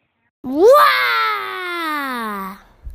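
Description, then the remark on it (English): A 5-year-old child lets out a single long, loud vocal roar, rising sharply in pitch then sliding slowly downward over about two seconds, imitating a T-Rex's roar. “How loud does a T-Rex roar?”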